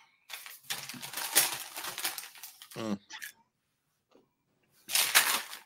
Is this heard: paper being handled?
yes